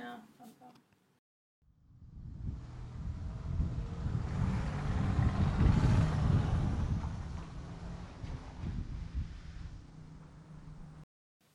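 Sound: car interior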